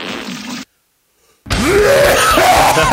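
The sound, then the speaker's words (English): A loud, rasping throat clearing follows a brief burst of hiss and a second of silence, with rough, guttural groaning sounds that shift in pitch and continue to the end. “Sorry, I just had to clear my throat.”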